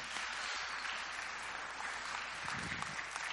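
A steady round of applause from a crowd, dense clapping filling the whole stretch at an even, moderately loud level with no voices over it.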